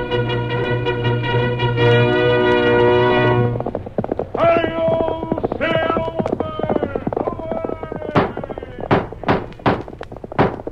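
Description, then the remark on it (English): The Lone Ranger's horse gallops in the opening of The Lone Ranger radio show, hoofbeats thudding in a quick, uneven rhythm beneath loud, brassy orchestral music, growing sharper and more distinct toward the end. “Horse with a speed of light, a cloud of dust, and a hearty high old silver, the Lone Ranger.”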